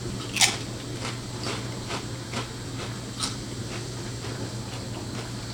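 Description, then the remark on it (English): A sharp crunch as someone bites into crispy Zapp's New Orleans kettle-style Evil Eye potato chips during a taste test, followed by steady, rhythmic chewing crunches over a faint low hum, with no talking. “Real crunchy.”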